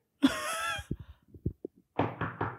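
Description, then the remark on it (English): A brief voiced call, then a scatter of soft, muffled thuds, followed by three firm knocks on door number 12 in quick succession. “They knock on a door.”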